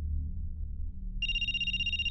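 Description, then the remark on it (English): A cell phone ringtone starts partway through, a bright electronic tone with stacked harmonics holding steady over a low background rumble, clear. “The caller ID in his cell phone read, unknown, but he knew who it was.”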